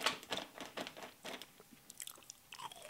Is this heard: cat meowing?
no